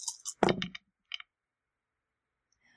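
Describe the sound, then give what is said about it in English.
Dice clatter across a hard tabletop in a quick rattling burst, with a brief second tumble a moment later, then quiet, landing on a 2 and a 3. The rolls sound fairly soft, with no voices. “That's a 2 on the dice, and that's a 3.”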